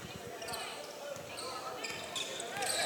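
A basketball thumps against a hardwood court in a loose dribbling rhythm as a team brings the ball up in the third period of a game, the bounces partly buried under a steady wash of crowd chatter and squeaky gym noise.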